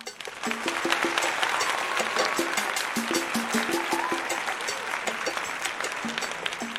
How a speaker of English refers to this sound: A round of applause for the author, Valton Brown, please.